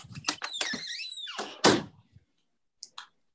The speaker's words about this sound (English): Yeah. The door is closed. The door is closed.